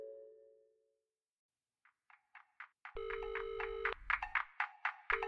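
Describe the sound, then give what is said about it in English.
A telephone rings with a rapid electronic trill of repeated chirping pulses, loud, after a brief fading tone and a moment of silence, before a voicemail greeting. No one speaks. “I can't come to the phone right now, but we'll likely have an opening later on. Please leave me a message and I'll be at your cervix.”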